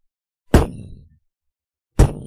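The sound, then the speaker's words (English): Two heavy, booming knocks on a door, about a second and a half apart. Each is a sharp wooden thud with a low, resonant decay. No one speaks. “On the door. Ithrim, you're the one who's spoken to him. Would you like to get the door?”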